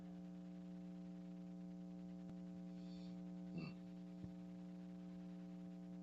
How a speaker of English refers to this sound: I'm trying to fix this humming sound. I know what I'm going to do. I'm about to plug into a different jack right quick.